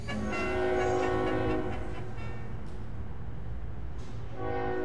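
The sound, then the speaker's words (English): A steam train rumbles along steadily while its horn blows a long, loud chord, fading out midway before sounding again briefly near the end. No one speaks. “And, of course, the railroad was expanding rapidly.”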